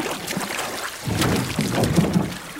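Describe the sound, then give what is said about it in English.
A small boat, a trash man's boat, rocks on the water, with gentle splashing and a low, steady rumble that swells midway through. Wind noise hisses faintly over it, and no one speaks. “Quietly, let's pull ourselves out of the water and onto the trash man's boat.”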